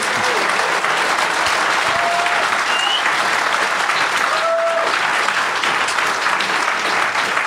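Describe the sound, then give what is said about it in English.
An audience at an NB Media Co-op panel event applauds the panelists steadily, a dense, loud patter of clapping that holds at an even level for several seconds without pause, with faint whistle-like tones briefly rising above it. “I would like to thank our very brave panelists today, and I'd like to ask you to give them a very warm round of applause.”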